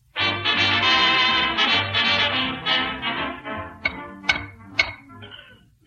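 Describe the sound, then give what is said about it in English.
Sustained, tonal music plays for a few seconds, then gives way to three sharp, separate knocks spaced about half a second apart, like knuckles tapping on a hard wall, as someone taps the walls looking for secret panels. “Besides, I'm tapping these walls for secret panels.”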